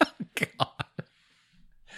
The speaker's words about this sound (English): Oh, excuse me. Little coffee burp there.